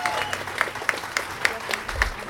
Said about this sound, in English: I have told Patty Minter it feels uncomfortable to stand in front of you and be applauded. I mean, it feels uncomfortable because all I'm trying to do is ensure civil rights for all people.